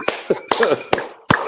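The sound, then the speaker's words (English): A handful of sharp, evenly spaced claps ring out, about four in a row, with voices talking and cheering loosely over and between them. “Let's clap it up for this man.”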